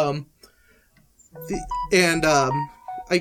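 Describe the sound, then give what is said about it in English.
A mobile phone rings with a bright, melodic tune in a few short tonal bursts, moderately loud, with a brief voice at the start. “My phone, I didn't need it. I'm sorry.”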